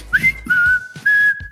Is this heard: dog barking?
no